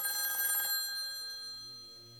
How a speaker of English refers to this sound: Then the phone rang.